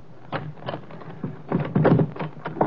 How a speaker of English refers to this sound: Wait a minute till I unlock the door.